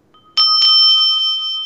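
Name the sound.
small bell being rung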